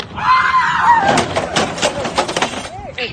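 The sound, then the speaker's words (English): A man screams angrily, a raw, strained yell lasting over a second before breaking into ragged shouting of "Give me the order right now!", with short clattering knocks and thumps toward the end as he knocks his items over. “It's a solid scream.”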